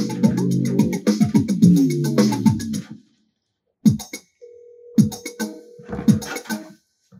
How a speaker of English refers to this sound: Is that as loud as your phone goes?